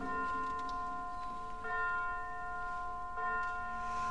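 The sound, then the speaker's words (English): Church bells toll in a slow, steady rhythm, three strikes about a second and a half apart. Each rich, humming tone rings on and overlaps the next, fairly loud and with no voices. “And this is the first tolling of bells, and it sends the sacristan into reciting the Angelus prayer.”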